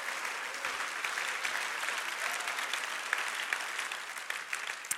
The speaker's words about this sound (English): Now that deserves an applause, okay? There you go. Thank you.